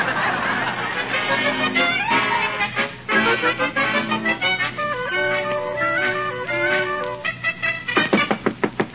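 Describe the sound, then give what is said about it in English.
Knocking on a door, a quick run of sharp, evenly spaced raps near the end, following a busy stretch of tonal, voice-like and musical sounds. “Who's there? Open up this door.”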